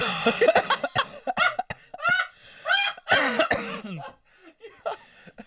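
A person coughs repeatedly in a harsh fit, with several bursts over a few seconds that taper off into quieter breathy coughs and throat sounds.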